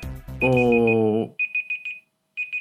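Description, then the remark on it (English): A quiz timer alarm goes off as an answer is finished: a loud, buzzy, harmonic electronic tone, then a rapid series of high beeps in two quick bursts separated by a short gap, with no talking. “The timer went as soon as you finished the answer and I didn't start the next question.”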